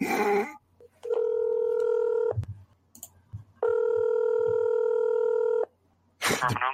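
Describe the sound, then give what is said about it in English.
Two long, steady electronic ringback tones sound through a phone line as a caller rings to place an order, separated by a pause, with a few brief clicks and bursts of noise at the start and end. “Won't have to be able to eat now because they won't answer my goddamn phone.”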